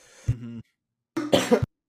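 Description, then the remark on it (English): Two loud coughs right into the microphone, separated by a brief pause, the second harsher and more drawn out, with no talking around them. “He's coughed into it.”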